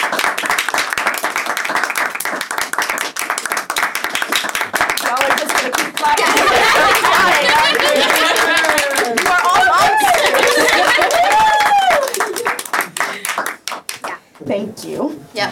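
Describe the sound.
A crowd bursts into sustained, dense applause lasting about twelve seconds, with voices whooping and cheering over the clapping midway before it thins out and fades.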